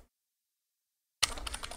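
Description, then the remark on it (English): Near silence, then a quick run of crisp keyboard taps clattering in an uneven rhythm as someone types out notes on a computer keyboard during the last half second. “I'm gonna start typing stuff out because I've been writing as we go, so give us a hot second.”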